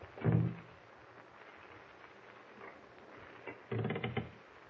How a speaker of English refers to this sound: Wait a minute, Pug. Huh? Someone at the door. Shh. He's trying to open it.